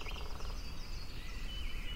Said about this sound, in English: The forest was not silent. It spoke in rustles and chirps, in the creak of branches and the soft tread of unseen creatures.